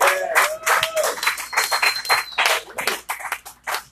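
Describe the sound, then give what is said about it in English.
A crowd at a poetry night applauds steadily for several seconds after a poet's performance, dense overlapping claps filling the room, with a sharp whistle and a few scattered cheers rising above the clapping. “Yeah, can we get another round of applause”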